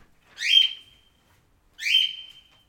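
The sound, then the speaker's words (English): A bird lets out two sharp, squawking whistles, each a quick rising call that trails into a thin ringing note, with about a second of silence between them. No one speaks. “Okay, I'm going to bring this bird back.”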